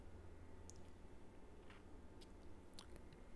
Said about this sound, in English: Very soft and super refreshing with that juiciness that we'd expect from a New England IPA. Let's give it another sip because it's just a beer that you want to keep going at.